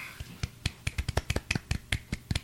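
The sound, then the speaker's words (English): Soft, polite golf clap: about a dozen light, sharp claps in a loose, uneven rhythm, fairly quiet, with no voices over them. “Golf clap.”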